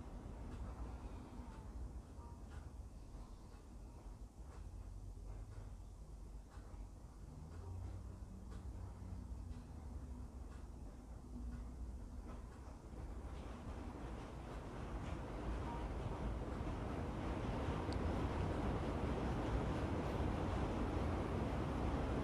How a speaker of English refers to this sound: Now you may be hearing a little bit of rain in the background. It's perfect timing for washing away whatever pains and struggles you and I may be going through right now.